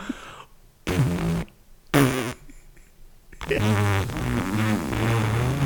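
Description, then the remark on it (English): An airy fart rips out loud: two short breathy bursts, then a long, wavering, sputtering blast lasting a couple of seconds, with no talking. “And then she farts, and then she goes, "Oh, I didn't know there were cameras in here."”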